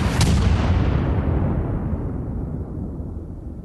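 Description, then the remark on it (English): A single loud dynamite bomb blast, thrown by an anarchist at police dispersing a crowd at the Haymarket demonstration, bursts out near the start, then a heavy low rumble slowly fades away over several seconds, with no voices present. “Between the blast and the gunfire afterward, seven police officers were killed, along with four civilians.”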